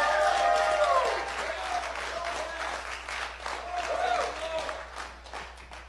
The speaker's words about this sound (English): Man, if you're a child of God, just give him a hand clap of praise.